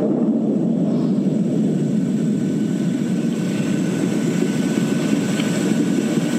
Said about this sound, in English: And that boom is typical of these very distant earthquakes. It's the body waves you're hearing and then the surface waves. Oh. That's why there's two. Yeah. And then this is a New Guinea one.